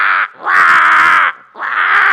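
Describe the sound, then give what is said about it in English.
Three loud, harsh crow caws in quick succession, each drawn out and raspy with short gaps between, with no other sounds around them. “I mean, anyone been to Australia and heard the rooks and the crows in the morning? Or the galahs?”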